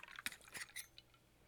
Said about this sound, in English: And then, shot of Kahlua, shot of Bailey's, shot of Di Serrano Amaretto, a shot of cream, a shot of milk. I know, but that's what's in it. Shake it up. Now you're going to pour that into a hurricane glass.